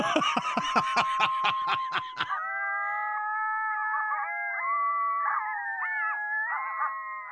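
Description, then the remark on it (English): A burst of rapid, high yips gives way to several coyotes howling together, following an ambulance siren, their long wavering tones overlapping and sliding in pitch, fairly loud with no talking. “Now, is that the one of the coyotes following the ambulance? It's a coyote.”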